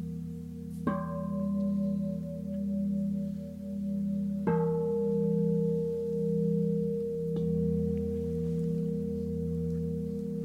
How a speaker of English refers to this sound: The pure sound of the bell summons us into the present moment. The timeless ring of truth is expressed in many different voices, each one magnifying and illuminating the sacred.